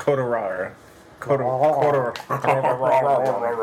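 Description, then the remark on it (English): A voice imitates a dog, making a string of whiny, yelping bark-like sounds with a short pause after the first, fairly loud. “That's what the doggy said.”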